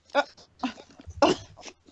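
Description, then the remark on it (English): A dog barks several times in short, sharp bursts spaced unevenly apart, with a low hum running underneath. “Screw the pooch with a dog in the background.”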